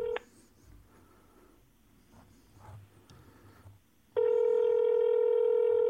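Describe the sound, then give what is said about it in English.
Telephone keypad dialing tones: a brief electronic phone tone at the start, a quiet stretch with faint handling noise, then a loud, steady tone that holds to the end. “usually when you call your dad, I edit out the 20 minutes it takes for you to like dial and ringing and all that shit.”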